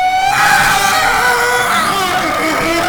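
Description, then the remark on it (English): A loud, shrill train-whistle scream holds steady for about three seconds, piercing and continuous with a slight wavering pitch, heard alone without any talking. “And this big mustachioed spirit does another train whistle scream that I won't do again because I'm just going to keep using that effect.”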